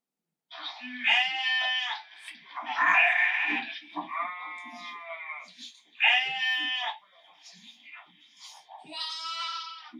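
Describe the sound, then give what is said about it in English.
A sheep bleats loudly, about five long wavering calls in quick succession, some blending together, with short pauses between them and no one talking. “In fact, a lost sheep will often just bleat and call for help and get itself into such a state of anxiety that it won't be able to move anymore.”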